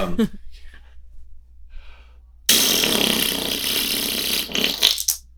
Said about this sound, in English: No, that's the corpse. That's I think that's a corpse fart. That's a corpse fart for sure.